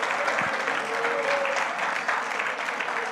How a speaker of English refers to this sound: Somebody clap your hands in this place.